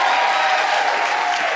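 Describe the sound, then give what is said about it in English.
An audience applauds steadily for Tom Selinsky, a dense wash of many hands clapping at an even, loud level throughout, with no break or talking. “can you give a big round of applause for Tom Selinsky, because he does the unsung hero work.”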